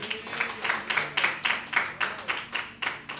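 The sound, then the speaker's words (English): A crowd gives God a hand clap of praise at the close of a service, clapping steadily in a fast, even rhythm, a dozen or so sharp bursts of many hands striking together, fairly loud with an echo and no one speaking. “So let's give God a hand clap of praise.”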